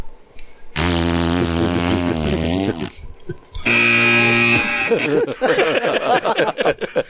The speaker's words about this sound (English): I wonder what that horn sounds like.